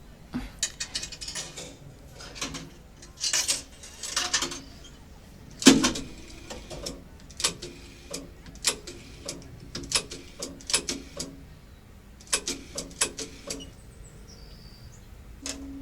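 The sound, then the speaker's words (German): A rotary telephone dial is turned and released again and again to dial a phone number, each spin followed by a ratcheting, clicking return, fairly quiet with no voices. “kennst du die Telefonnummer von Wiehold? Klar, ich wähl mal.”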